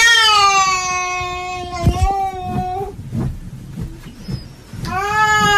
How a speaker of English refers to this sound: You may remember before that I've played you things like, say, when a cat makes this noise.